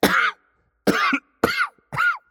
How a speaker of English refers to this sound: The man was taken aback for a moment, and he coughed.